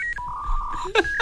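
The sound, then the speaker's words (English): A dial-up modem connecting to the internet over a telephone line: a steady mid-pitched electronic tone, then bursts of harsh hiss with a gliding chirp and a high whistle, all brief and fairly loud with no talking. “This is what it used to sound like when your telephone dialed Mr. Internet.”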